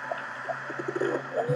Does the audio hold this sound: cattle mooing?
no